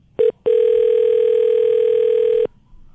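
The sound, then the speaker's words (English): A loud telephone dial tone as a prank call is placed: a brief beep, a short pause, then a steady unbroken tone holding for about two seconds before cutting off, with no talking. “We are going to prank call my friend Roy Handler, Chelsea Handler's brother, and we are going to get the dirt on his sister, if we can, if he doesn't recognize my voice.”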